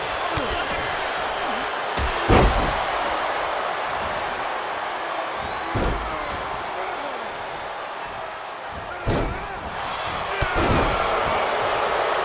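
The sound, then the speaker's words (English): Heavy thuds as Eddie Guerrero slams AJ Styles' face onto the ring canvas, four loud impacts spaced a few seconds apart over a constant roar of crowd noise. “Slams AJ Styles' face foot back into the canvas.”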